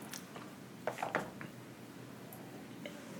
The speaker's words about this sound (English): That was a big old gulp.